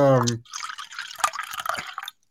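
A brief voiced exclamation, then splashy water pouring and dripping for about a second and a half, a busy liquid patter that stops abruptly.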